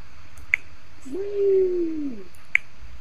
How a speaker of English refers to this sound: Now she's playing with effects. Yeah, she's putting different fucking effects on her phone. Alright. That's what that clicking is.